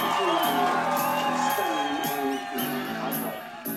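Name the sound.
crowd applauding and cheering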